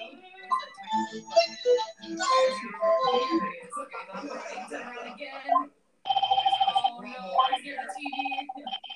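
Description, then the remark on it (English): A video game telephone rings with a rapid, trilling electronic pulse, starting partway through and continuing steadily, preceded by busy game sounds and voices. “That phone ringing is like pissing me off.”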